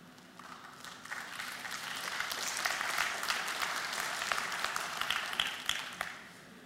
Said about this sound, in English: Today, our applause is yours. Jesus, King Jesus.